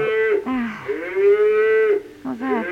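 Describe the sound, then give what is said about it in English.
A cow moos loudly, three long drawn-out lowing calls in a row with brief pauses between them, the middle one the longest and most sustained, heard in the middle of a residential district. “That sounded like a cow mooing.”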